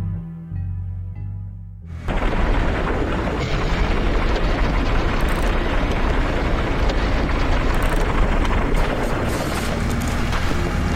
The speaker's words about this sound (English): Distant planet, under two blazing suns, two Sirlaks are operating heavy machinery in an effort to drill through its rocky surface.